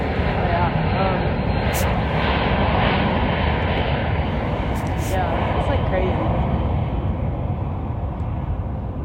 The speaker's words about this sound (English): Also the plane here, pretty close. Humongous.